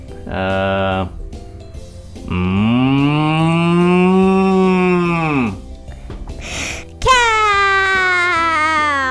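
Three loud cow moos: a short one, then a long drawn-out bellow that falls off at the end, and after a brief pause a third moo starting abruptly.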